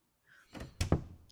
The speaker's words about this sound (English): And they hear the door kind of thud shut slowly and turn around.